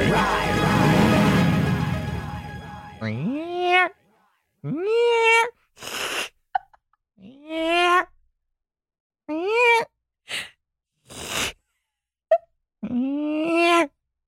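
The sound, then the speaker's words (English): A person imitates a cat, giving about five drawn-out, rising-then-falling meows separated by short pauses and brief clicks, after an opening rush of noise. “Can you tell them about my cat era?”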